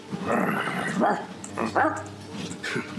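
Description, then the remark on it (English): A person walking the Camino imitates an angry dog at passing cyclists, letting out a series of rough growling barks and snarls in uneven bursts over about three seconds, with no ordinary speech. “I'm turning into an angry dog.”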